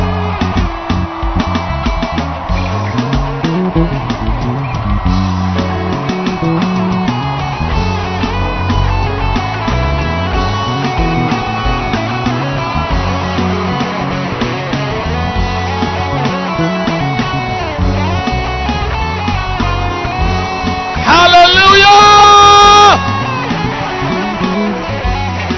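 A large audience in a hall shouts to the Lord together in a loud, sustained roar of many overlapping voices, with a sharper, higher-pitched burst rising above the crowd near the end.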